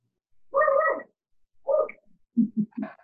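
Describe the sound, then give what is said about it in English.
A dog, Willie, barks several times: first a drawn-out, yelping bark, then a shorter one, followed by three quick, lower barks in a row. There's no talking. “And that barking is not a part of the meeting that's not supposed to be happening.”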